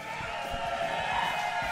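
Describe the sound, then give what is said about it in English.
A crowd cheers and whoops in a steady, dense wash of voices that lasts the whole moment, fairly loud, with no single voice standing out, in the crowded studio of the Ben and Woods show on the radio station 97.3 The Fan. “Holy smokes, it is just getting more and more crowded in here.”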